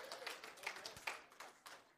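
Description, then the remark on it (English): Three scattered hand claps, sharp and crisp but fairly quiet, arriving at an uneven, halting rhythm with no one speaking over them. “I got 3 hand claps out of that whole thing.”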